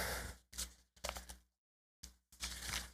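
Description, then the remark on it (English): Crinkly bursts of paper rustling come in several irregular handfuls, broken by a brief silent pause before the crackling handling resumes. No one speaks. “That paper messed me up.”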